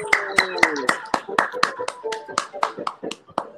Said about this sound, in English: Hey, everybody. Clap for me.